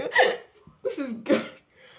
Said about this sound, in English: there it is, folks. Oh gosh. Okay, I have the hiccups.